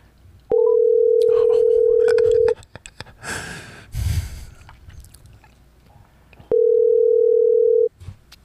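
Steady, loud telephone tone on an outgoing call: two long low-pitched beeps, about two seconds and a second and a half, separated by a few seconds of rustling noise.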